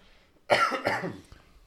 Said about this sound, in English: I'm sorry. I'll stop coughing. You're not sick, allegedly. I'm okay. So, just so everybody knows, I was diagnosed with the flu on Wednesday of this week.